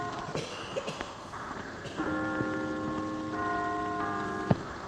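A large clock bell in London strikes eight o'clock, its deep resonant tone ringing and sustaining over a low, steady outdoor hum, with a few faint ticks and knocks.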